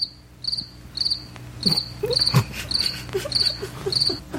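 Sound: crickets chirping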